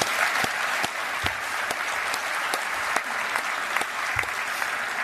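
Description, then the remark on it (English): Steady audience applause fills the whole stretch, a dense wash of many hands clapping with a few sharper claps standing out, sustained at an even, moderately loud level without voices. “And I just want to say thank you from the bottom of my heart for everything you've done for me, and you deserve a round of applause for sure.”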